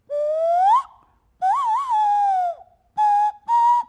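A nose whistle, pushed against the nostrils and blown only through the nose with the mouth open and the back of the throat closed, plays a short breathy tune in four phrases: a rising swoop, a wavering warbling note, then two brief steady tones, fairly loud with no talking.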